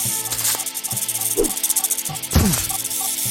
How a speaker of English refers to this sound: Oh, there's another snake. I hear it.